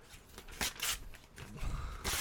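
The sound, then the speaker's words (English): Printed-out news pages being ripped up by a man in several quick, rasping tears, each a short crackling burst with brief pauses between, fairly quiet, with no voices. “he literally just got the news that we printed out. All right, well. And he just ripped it up.”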